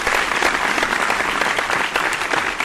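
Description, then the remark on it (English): A burst of applause sound effect: dense, steady clapping from a crowd, bright and fairly loud, sustained evenly for a few seconds without any voices. “Where's my clap? Give me my clap.”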